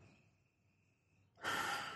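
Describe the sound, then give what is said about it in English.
A breathy sniff, one sustained inhale through the nose as someone smells a glass of beer made with Brettanomyces and Belgian yeast, following a moment of near silence. “And actually, as I continue to sniff it, I feel like that kind of banana-y note from the Belgian yeast is starting to show up more in the nose.”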